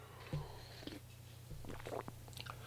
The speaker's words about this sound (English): I'm going to take a sip of coffee. Hold on just one sec.